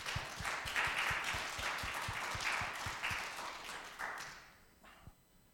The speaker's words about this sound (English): Can we just give a round of applause for those?